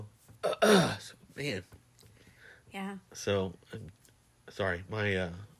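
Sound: throat clearing and coughing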